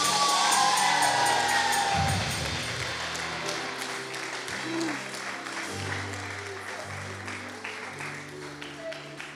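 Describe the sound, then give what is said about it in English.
A crowd gives God a loud shout of praise, erupting in applause, cheering and shouting, a dense wash of clapping and raised voices that starts at full strength and eases off slightly while staying sustained throughout. “If you believe that this with me, give God your best shout.”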